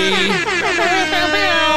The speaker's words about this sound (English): Oh, God, we've got battling air horns. Got to. I'm just glad the air horn comes after my name.